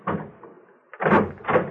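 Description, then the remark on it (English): A side door opens with a soft rattle, then after a brief pause closes with two solid clunks, each loud, with no voices. “I'm going to slip out the side door and leave you two alone.”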